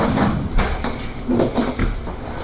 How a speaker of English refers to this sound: I need to fix my chair. Squeak, squeak, squeak.